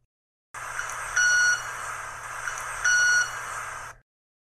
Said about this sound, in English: This stimulates the special feathers at 1,500 cycles per second, allowing them to produce sound. Now that we know how it works, let's hear it.